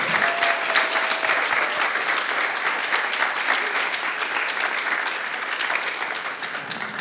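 Sustained audience applause, a dense, steady wash of many hands clapping at once that stays loud throughout and eases off slightly at the very end, with no one speaking.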